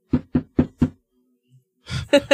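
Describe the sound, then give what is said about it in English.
Four firm, evenly spaced knocks on the door of a house, followed by a pause and then a short burst of louder, voice-like sound. “Dale shows up to your house, and he knocks on the door”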